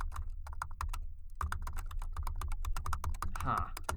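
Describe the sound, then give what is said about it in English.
Rapid, continuous typing on a computer keyboard, clear, with dense clattering keystrokes and a brief pause near the start before the tapping resumes steadily, done while scanning a QR code. “Course, scanning QR codes involves a lot of typing.”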